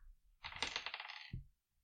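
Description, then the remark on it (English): A small six-sided die clatters across a hard tabletop in a quick burst of bright, rattling taps, ending with a soft thud as it settles. Fairly loud, with no voices. “Low die grabs them. One six-sided dice.”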